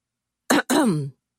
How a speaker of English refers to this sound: It was Charles who broke the tender moment with a baritone cough.